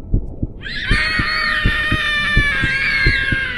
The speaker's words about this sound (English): Scream after scream rang through the silence, piercing shrill. The screams of a little child. No, of little children. Not the screams one hears in a nursery.